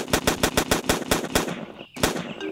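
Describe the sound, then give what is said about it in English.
A rapid, evenly spaced string of about ten loud gunshots fired into the air, a brief pause, then one final sharp shot. No one speaks. “Why are you shooting in the air right now?”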